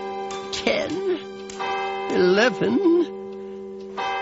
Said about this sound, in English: And sleep he did for exactly 1 hour. When the clock struck 12.